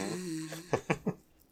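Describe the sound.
Someone imitates snoring with their voice: a drawn-out, buzzing nasal rumble followed by three quick snorting puffs, fairly quiet, with no other talking.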